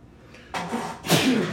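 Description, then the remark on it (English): Two quick, breathy sneezes close together, the second one louder and sharper, with no talking around them. “I think you might be allergic for real.”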